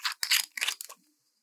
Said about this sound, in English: All right. Should we crack it open? Let's crack it open. Let's pour. Okay. I want to hear that happy sound. This is a screw top.